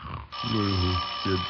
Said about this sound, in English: Oh, doorbell. It must be the tax collector.